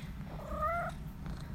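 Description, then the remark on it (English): Miss Kitty, a cat, purrs steadily, a low continuous rumble, with one short, tonal meow rising briefly over it partway through. No one speaks. “Miss Kitty's joining us today. She's noisy.”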